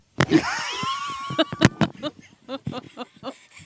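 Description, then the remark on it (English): A drawn-out, buzzy fart made with a microphone taken off and held to a man's backside, lasting more than a second with a wavering, slightly rising tone, followed by several short bursts of laughter. “That was an actual fart for those not watching on YouTube.”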